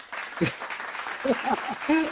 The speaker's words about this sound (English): Let me go on ahead and throw some claps on it for that.